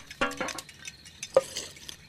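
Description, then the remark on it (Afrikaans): A spoon clinks against a cup as two spoonfuls of sugar are stirred into coffee, with a few bright, ringing taps spaced unevenly over soft scraping swirls. No voices are heard. “Gooi vir my net 2 lepel suiker in.”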